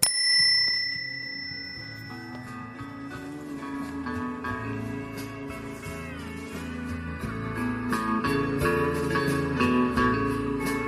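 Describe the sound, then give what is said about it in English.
A bright, ringing bell, rung as a sign-off signal in Thompson Park, chimes once at the very start and fades, then a full band of music with a steady beat takes over for the rest. “Do we need the bell? Yeah, because it's an official sign out.”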